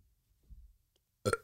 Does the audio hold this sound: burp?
yes